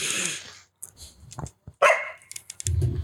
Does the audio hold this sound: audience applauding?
no